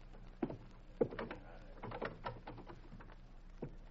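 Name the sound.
door opening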